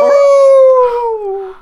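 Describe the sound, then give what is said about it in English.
A loud, sustained howling squeal of microphone feedback, sounding much like a dog's howl, holding steady and then sliding slowly downward in pitch over about a second and a half. “In the feedback from the mic, it sounds like my dog slipped through my ear.”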